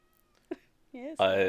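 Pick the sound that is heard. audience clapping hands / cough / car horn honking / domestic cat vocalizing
domestic cat vocalizing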